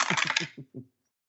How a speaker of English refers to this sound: Come on, dice, where you at?